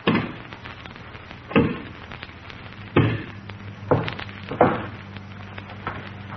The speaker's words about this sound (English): Six inch log, and he's breaking it with his hands.